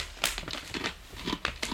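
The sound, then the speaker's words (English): Dry, crackly crunching as an apple-flavored granola cereal from Costco, with real apples, is chewed from a bowl, a quick series of sharp, bright crackles with short pauses between bites, fairly quiet with no talking. “There's the crunch.”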